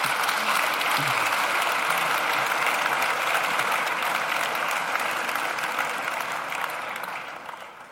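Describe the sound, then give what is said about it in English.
Sustained audience applause at a wine talk welcoming the guest speakers, including Master of Wine Jancis Robinson, a dense wash of many hands clapping at a steady, loud level that begins to thin and fade slightly toward the end. “I think they deserve a round of applause just to get us going.”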